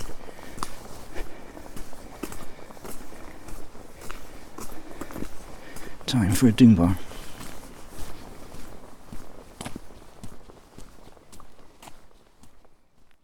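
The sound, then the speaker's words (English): Steady footsteps walk up a road towards a car park, a regular rhythm of crunching steps at moderate loudness, with a brief spoken remark partway through. “Time to walk up the road where my lift awaits in the car park.”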